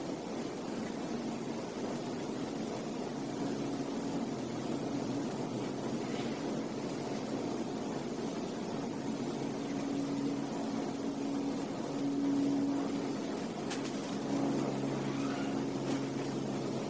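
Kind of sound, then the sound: vehicle, airplane flying overhead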